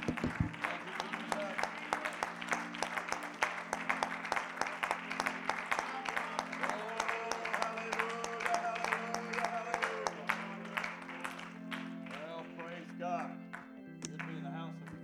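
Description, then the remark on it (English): An audience at the Truth Church claps hands in praise of the Lord, a dense, sustained round of applause lasting the whole stretch, with a steady low musical drone and voices underneath, tapering slightly near the end. “Let me give the Lord a good hand clap of praise.”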